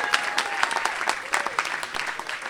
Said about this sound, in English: Give him a warm round of applause.